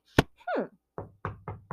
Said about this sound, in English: Taking the book, he walked downstairs and knocked at his neighbor's door. There was no answer.